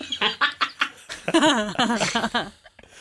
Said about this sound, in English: you hear what sounds like echoing quacks coming up.